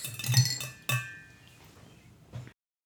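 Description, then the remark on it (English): Several glasses clink together in a toast at a restaurant, a quick cluster of bright, ringing taps, followed by another sharp clink and a final softer one, with a short lingering ring. “Cheers, everyone. Cheers.”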